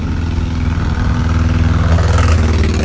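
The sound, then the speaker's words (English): A loud, raspy engine with no muffler drones steadily with a rough, buzzing mid-low tone like an unmuffled motor, coming up from behind on a street before sunrise, growing slightly louder and harsher toward the end as it revs up. “Sounds like a lawnmower.”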